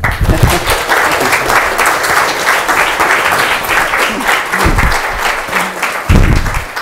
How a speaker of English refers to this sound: So would you, with your applause, please welcome the Honorable Helen Clark.